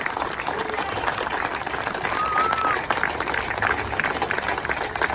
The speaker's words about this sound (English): Let's give every family of a veteran a round of applause. Show them what we appreciate everything they do.